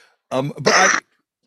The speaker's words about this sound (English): I'm sorry, I have a little cough. In case I cough, don't be surprised.